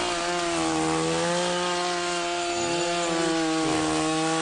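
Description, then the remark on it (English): A motorized rubber paddle broom made by Echo runs steadily, its small engine droning with a buzzy harmonic hum over a constant rushing, gritty noise as it sweeps rocks out of grass without tearing up the grass; no one speaks. “This is called a paddle broom. It's made by a company called Echo. So it's made out of like rubber.”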